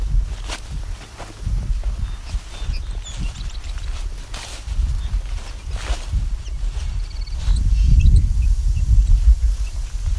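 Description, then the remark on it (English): A very large flock of bobolinks gives scattered, short, high-pitched beeping calls, faint and overlapping, over steady footsteps and low rustling throughout. “Okay, looking at a flock of bobolinks.”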